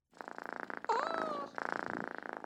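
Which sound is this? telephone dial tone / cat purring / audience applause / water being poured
cat purring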